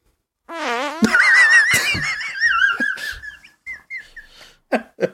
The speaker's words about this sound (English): You let out with a big fart. It was perfect.